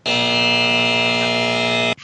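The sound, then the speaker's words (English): A loud, harsh electronic buzzer blares in one steady, continuous tone for about two seconds, then cuts off abruptly, with a brief trailing noise at the end. “The buzzer's buzzing.”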